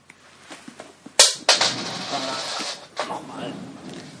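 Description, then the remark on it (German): A coin is flicked with a sharp snap in a coin toss, then clatters and rattles on a hard surface for over a second before a final tap as it settles, landing tails side up. “Du wirfst jede Woche eine Münze und kannst das immer noch nicht.”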